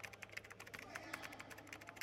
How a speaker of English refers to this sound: What are you typing?